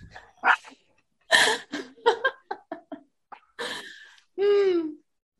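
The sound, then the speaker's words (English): A dog barks in an uneven string of short, varied yips and barks, fairly loud, ending with a longer drawn-out whining howl. No one talks. “Maybe she's giving us a solution for the zombie apocalypse, and we just don't know because we don't speak dog.”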